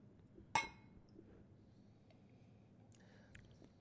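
A single bright clink of bottles of abbey-style double beer knocking together in a toast, ringing briefly before fading, followed by a few faint taps against a quiet hum.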